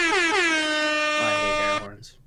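A single loud, blaring air horn blast rings out close by for nearly two seconds, its harmonic tone wavering slightly before cutting off abruptly.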